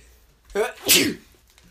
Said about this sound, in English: Oh, excuse me. If you sneeze 3 times, you're a genius.